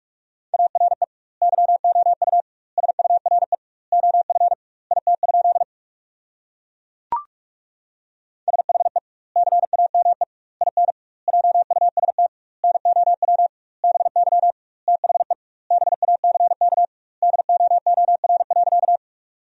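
Rapid Morse code at about 45 words per minute with double word spacing, sending sentences built from the top 300 words: a steady mid-pitched beep keyed in quick bursts, grouped into words separated by short pauses, with one sharp click partway through.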